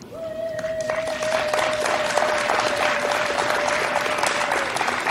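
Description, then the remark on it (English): Steady crowd applause fills the whole stretch, with one woman's long, high-pitched sustained cheer ringing above the clapping for several seconds. “By the way, I love the one random woman in the background that's acting like she's at a high school cheer competition.”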